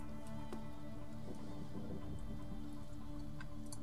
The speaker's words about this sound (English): And a small light drizzle starts to kind of fall over this, and you can hear cracks of thunder in the distance.